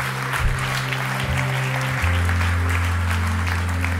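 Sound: church audience applause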